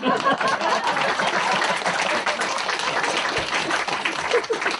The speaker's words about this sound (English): That's the last joke. Okay, clap hands.